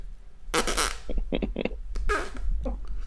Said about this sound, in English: Geez, that's like a greasy Casey's pizza fart.